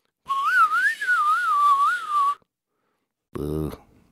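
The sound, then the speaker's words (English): A person whistles to call back a rat, a long, wavering note that rises and falls for about two seconds, loud, followed by a pause and then a short, sharp burst of sound. “Well, whistle. Whistle for him again.”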